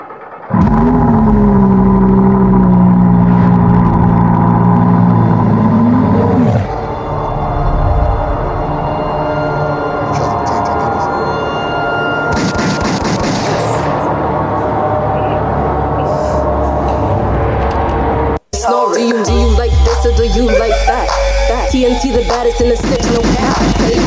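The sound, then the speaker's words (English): A loud hip-hop track plays. It opens with a revving engine sound before a dense, driving beat kicks in, with a brief dropout near the end before the music resumes. “Let's get to some music before you even get to anything.”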